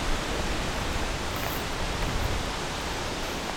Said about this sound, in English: It's getting a little windier.